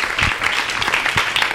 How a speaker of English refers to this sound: Great. Let's applaud them first.